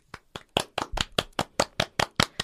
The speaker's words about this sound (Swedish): Vanliga tacksamhetsgester är applåder.